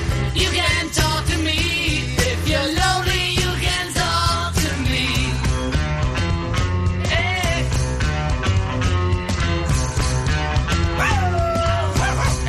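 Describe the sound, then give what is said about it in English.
A dog barks and yips repeatedly along with loud, dense music, its calls mixed in with the full band rather than standing alone, with a few rising whine-like tones. “start barking along with the thing.”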